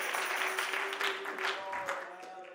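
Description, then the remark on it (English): An audience claps hands in a steady, dense wash of applause that fills the whole clip, with sustained musical tones and faint voices underneath. “Well, everybody ought to clap your hands.”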